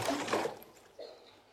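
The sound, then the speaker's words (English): Water is stirred and splashed, sloshing in a short burst, a broad watery swirl at first, then a quieter slop and trickle that fades away. “One of the other translations is fan into flame, but I like the stir up today because, you know, I can get hold of this and start to stir it or splash it.”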